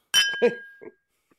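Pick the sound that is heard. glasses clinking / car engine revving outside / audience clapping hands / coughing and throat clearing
glasses clinking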